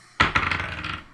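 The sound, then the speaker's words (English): Dice rolled during a game clatter across a table: a sharp first hit, a few quick bouncing clicks, then a brief rattling tumble that settles and fades within about a second. No one speaks. “Roll 2 more times. 1 more time, actually.”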